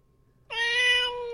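A single cat meow begins abruptly after a brief quiet moment and holds steady and loud, with a bright harmonic tone that fades slightly toward the end.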